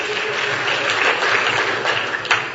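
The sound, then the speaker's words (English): Steady applause from a crowd fills the whole stretch, a dense wash of many hands clapping at fairly even loudness, with one brief sharper burst near the end. “Clap that up, because it's real shit.”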